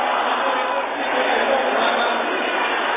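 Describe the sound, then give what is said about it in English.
An audience shouts loudly together, a dense wall of overlapping voices that holds steady at full volume for the whole three seconds with no single speaker standing out. “Can I hear somebody shouting that loud?”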